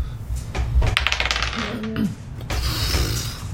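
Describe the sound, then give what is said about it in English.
Dice clatter and tumble across a hard surface in a quick burst of rattling clicks during a roll for knowledge history in a game, followed by a brief settling and faint background murmur. “Oh, it's that dice.”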